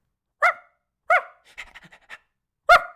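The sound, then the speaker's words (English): A former children's theater actor imitates a dog: three loud, sharp barks spaced about a second apart, with a burst of quick, breathy panting between the second and third. “They dressed me up like a dog, you know?”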